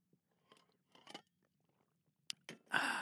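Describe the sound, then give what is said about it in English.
Sipping drinking water: a few soft, wet mouth clicks and slurps with quiet gaps between, then a louder breathy, satisfied exhale at the end. No one speaks. “But before we get there, I'm going to take a sip of this fine, high-quality H2O.”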